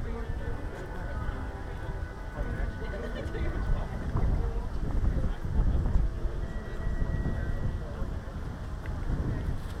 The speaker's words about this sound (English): getting a little windy out here.